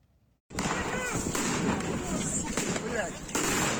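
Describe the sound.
Sharp gunshots and heavy blasts crack out a few times over a loud, noisy street scene in Skadovsk, Ukraine, where Ukrainian citizens protesting the detention of their mayor face off against Russian forces, with a crowd shouting and voices calling throughout.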